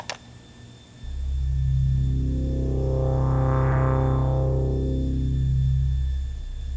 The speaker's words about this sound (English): The sounds on this tape are from a custom-made synthesizer